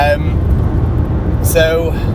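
A massive lorry rumbles past on the road, trying to cut in on the car being driven as it accelerates; its deep engine drone fills the road noise, with brief tonal whines rising at the start and again near the end.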